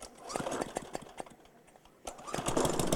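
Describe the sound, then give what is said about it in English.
A small racing lawnmower engine sputters and revs in a rough, rapid pulsing rhythm, dipping briefly before roaring back louder, fairly loud throughout. “This is a racing lawnmower.”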